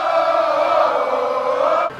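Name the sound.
crowd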